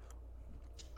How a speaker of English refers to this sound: Besides a slightly burp in the distance, going burp, burp, burp, burp, burp.